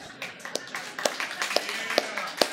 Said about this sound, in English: Only white people are clapping right now.